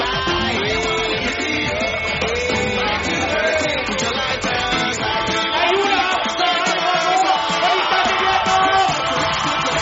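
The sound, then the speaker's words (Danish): A large crowd at a handball match roars continuously, with whoops, yells and shouts rising out of a dense wall of cheering that stays loud and steady throughout. “Fantastisk publikum.”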